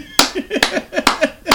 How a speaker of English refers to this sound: I don't care if I'm fucking the audio up clapping. Winner.